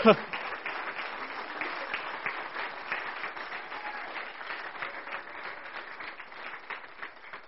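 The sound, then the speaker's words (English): A crowd applauds steadily for several seconds for a group of high school seniors, many hands clapping in a dense, even patter that holds fairly loud throughout, with faint voices mixed into the noise. “Can we just clap?”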